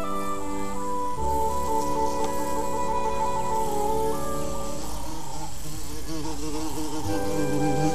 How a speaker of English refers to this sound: It's a beautiful morning in a glade in England. The dew is glistening, the birds are singing, and a bumblebee is buzzing along, foraging for nectar and pollen.